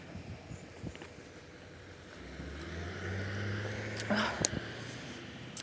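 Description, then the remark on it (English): A large truck rumbles past, its low engine drone building over a few seconds and then fading, with wind buffeting the microphone throughout. “Big old truck.”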